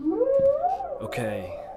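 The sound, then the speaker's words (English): A whale song played through a ship's whale song relay: a long, rising, moaning tone that swoops upward, then wavers into a lower, buzzy call. It is fairly loud, with no talking. “Whale song relay engaged.”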